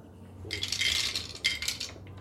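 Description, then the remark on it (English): Two handfuls of dice clatter across a tabletop in two bursts, a long rattling roll followed by a shorter one, fairly loud with no voices. “Caleb had 2 handfuls of dice.”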